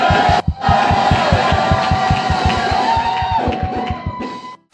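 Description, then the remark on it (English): A church audience shouts and cheers loudly in praise to the Lord after a prayer, a dense wall of voices over rapid, steady rhythmic clapping, with a brief dip near the start before it swells on for several seconds. “Then give the Lord a big, big, big, big, big shout.”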